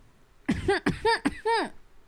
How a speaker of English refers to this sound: Okay. It is so fizzy. It is making me cough. Oh, yeah. It's like shitty Whole Foods. It's like effervescent, like super, super carbonated.